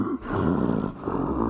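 A large creature lets out a deep, rough grunt of pain right above the listener, a loud, close, guttural groan lasting over a second with a brief catch partway through, the sound coming from its gullet. No speech.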